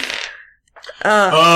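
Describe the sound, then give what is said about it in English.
A die clatters and rattles briefly as it is rolled across a table, fading out within half a second before a person starts speaking. “Can you grab that for me, please? Because apparently... I can't roll a dice.”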